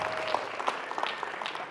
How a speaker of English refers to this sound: Give them a round of applause, right? That's the champ right there.